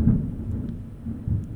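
thunder

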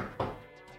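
knocking on wood

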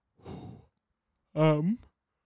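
big yawn

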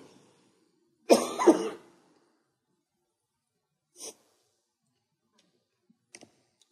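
speaker coughing

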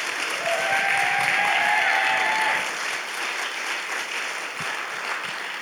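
audience clapping hands

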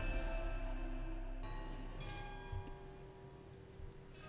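cathedral bell ringing

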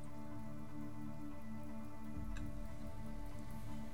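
rain falling

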